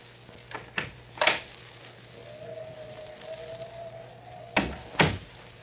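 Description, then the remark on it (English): A few knocks and rattles as a door is handled, then a long creak while it swings, ending in two solid thumps as it shuts, with no voices. “She's getting up now. Quiet, you two. There she goes to the door.”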